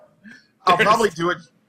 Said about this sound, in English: Sorry, his dog is barking.